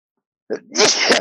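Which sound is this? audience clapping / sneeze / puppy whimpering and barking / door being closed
sneeze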